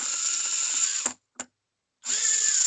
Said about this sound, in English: All right, calm down with the drone.